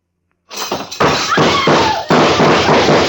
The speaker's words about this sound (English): They're going to dump a table.